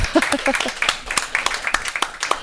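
A short burst of scattered audience applause, sharp irregular claps filling about two seconds, with a brief voice audible at the start.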